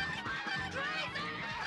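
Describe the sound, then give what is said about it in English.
A flock of geese honks loudly and continuously, many harsh overlapping calls crowding together for a brief, chaotic burst. “Now it's time for the heavy artillery. Killer geese.”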